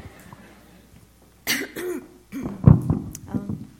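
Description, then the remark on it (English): A person with a tickle in their throat clears it and coughs several times, a sharp breathy burst followed by a few rougher, throaty coughs in quick succession after a quiet start. “I have a little like tickle in my throat, so forgive me beforehand because I'm going to be clearing my throat and probably I'm going to be coughing and all that.”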